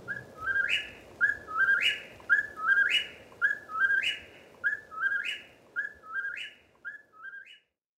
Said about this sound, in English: Through the night, the incessant calls of the whippoorwill can be heard from New Brunswick to northern Georgia.